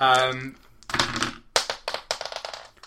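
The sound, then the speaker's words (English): A short voiced sound, then a burst of four dice being rolled, clattering and tumbling across a hard tabletop, a run of quick, sharp clicks that scatter and settle, clear. “All right, give me a roll of actually all four dice.”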